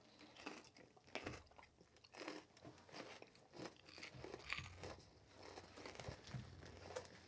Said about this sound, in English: Well, actually, I'm going to do the first crunch so that people can hear that this is genuine.